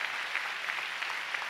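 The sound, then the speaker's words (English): Steady applause from a church audience at City Harvest Church, clapping to give God a big hand, a dense wash of many hands clapping at even loudness throughout, with no voices standing out. “Oh, come on, give God a big hand.”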